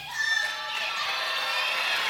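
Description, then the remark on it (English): An audience cheers and shouts in a dense, steady roar of many voices that holds at an even level for about two seconds, with no single voice standing out. “That was way more enthusiasm than I thought I was going to get.”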